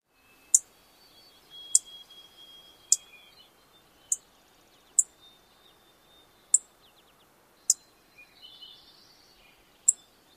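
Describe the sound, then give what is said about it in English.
A Vesper Sparrow gives eight sharp, dry chip calls at uneven intervals, each brief, lower and harder than a Savannah Sparrow's call, with faint thin bird calls and soft outdoor hiss in the background. “So one more time, the chip call of the Vesper Sparrow.”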